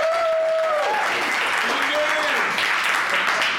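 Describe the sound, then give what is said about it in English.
An audience applauds steadily for several seconds for the night's judge, a dense wash of clapping mixed with a few whoops and cheering voices rising over it. “So another round of applause for our judge tonight”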